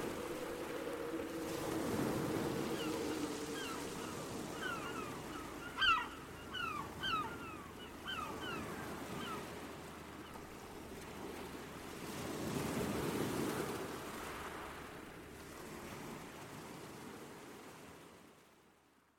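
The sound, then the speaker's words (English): Ocean waves roll onto the shore in slow, rising swells, with a steady low rumble of surf between them and a brief flurry of bird chirps partway through; no one speaks. “in her sepulcher there by the sea, in her tomb by the sounding sea.”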